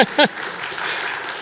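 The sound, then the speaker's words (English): An audience claps in a steady, even wash of applause with no clear pauses, and a short spoken word rises briefly above it near the start. “Yeah, you can clap.”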